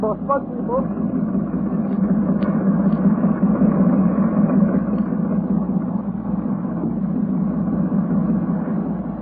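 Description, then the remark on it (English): A boat engine labors steadily, a rough, continuous low rumble that holds at a constant, fairly loud level for the whole stretch without pausing. “On the sound of it, that engine needs attention.”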